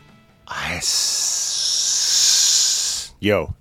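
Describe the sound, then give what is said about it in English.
A steady, bright sizzling hiss of steak searing on a grill holds for about two seconds, with a short burst of voice just before it and another right after. “give me a little sizzle on your steak over there.”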